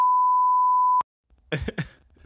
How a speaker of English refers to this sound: Beep.